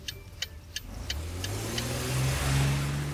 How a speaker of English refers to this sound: we're just driving up the road that takes us back to the club.